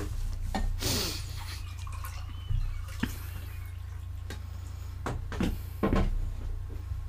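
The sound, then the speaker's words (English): Handling noises over a steady low hum as someone fetches more water: a cupboard door opening and closing, then several sharp clinks and knocks, like a glass being taken out and set down. “I'm getting you some more water.”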